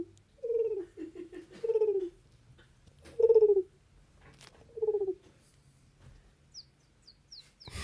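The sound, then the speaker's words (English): A person imitates a small bird call with their mouth, a handful of warbling, cooing chirps in short bursts, fairly loud, followed by a few faint, quick high peeps near the end. “Go back to the little bird. That's pretty good.”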